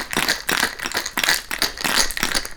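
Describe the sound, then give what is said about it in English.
A cocktail shaker holding a drink with egg white, bitters and key lime is shaken hard for a shaken and strained drink, ice rattling in steady, bright bursts about twice a second, loud and uninterrupted, with no talking. “So I gave it a little shaky shake, and now it's taken on the color of the key lime, so kind of a margarita color now, like a sickish urine color, or maybe opaque yellow.”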